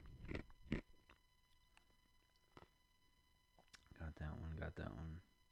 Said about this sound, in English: I'm about to crunch some more ice for that one. Some ASMR.